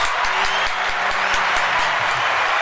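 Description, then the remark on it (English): A steady burst of clapping from a small group in the STL Beyond FM radio studio for a live in-studio guest, dense and continuous with sharp hand claps standing out, sustained at a fairly loud level throughout with no voices. “I'm going to give him a round of applause.”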